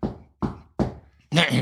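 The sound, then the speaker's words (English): Three firm, evenly spaced knocks on a door ring out, each with a short hollow decay, followed by a brief louder burst of voice. “Yeah, so I'll something like maybe knock on the door.”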